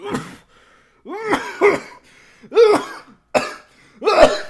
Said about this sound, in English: Actually started... And so, actually, like you started coughing. And then I started to, like, realize, huh, this is an issue.